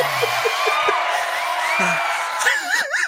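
A crowd cheers and whoops loudly for about three seconds, a dense wash of voices with a few sharp yells, ending in high, wavering whoops that rise and fall, as Tiffany Topol is welcomed.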